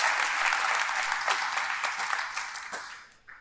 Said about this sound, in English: Could you give God a round of applause, please?